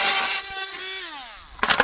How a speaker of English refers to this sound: tries several different screwdrivers and then resorts to an electric drill, which he uses to force the toy open.